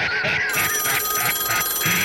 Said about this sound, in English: All right, now. Wait a minute. I think I hear the phone ringing. What the hell could this be?